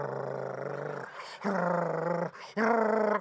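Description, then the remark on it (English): A person imitates a dog's growl: three loud, throaty growling bursts, each about a second long, separated by brief pauses, with no spoken words. “And then when you're standing in front of it, the dog is like this.”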